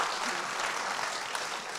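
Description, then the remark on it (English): An audience applauds in a steady, dense wash of clapping that holds at an even level throughout, with no voices rising above it. “Oh, come on, that's got to be worth an applause.”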